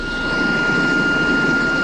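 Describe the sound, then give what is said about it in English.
A steady, unbroken hiss of gas escaping from a broken gas line on the pile of ash where a house stood after a fire in Geyserville, with a thin, high whine held at a constant pitch over it. The level stays even throughout, with no voices. “The hiss and whine of a broken gas line is one sign that a house stood on this pile of ash.”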